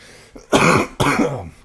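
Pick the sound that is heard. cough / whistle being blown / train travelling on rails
cough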